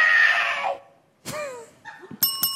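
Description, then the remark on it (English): Electronic sound effects from a Bop It handheld electronic game, which calls out actions for the player to do: a harsh, screechy burst, a quick swooping zap, then a couple of bright electronic beeps, loud with no talking. “If you don't know, Bop It is a handheld electronic game that's sort of, it's like Simon Says, but it just tells you to do things, right?”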